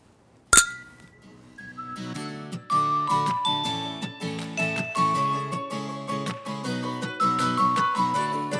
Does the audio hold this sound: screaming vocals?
no